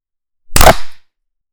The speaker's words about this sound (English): Okay, let's clap at 10.